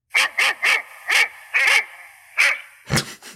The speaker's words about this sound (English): The second one is dog barking.